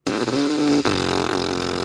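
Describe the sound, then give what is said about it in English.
A loud, buzzy fart, drawn out for nearly two seconds with a brief sputtering break midway before it rumbles on. No one speaks. “like, sorry, I let out like a really big fart, like, and it was just like.”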